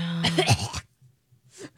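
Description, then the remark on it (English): A rough cough with a raspy, throaty tone, aimed jokingly at David Zaslav, followed after a short pause by a second, briefer cough. “That was me coughing at David Zaslav.”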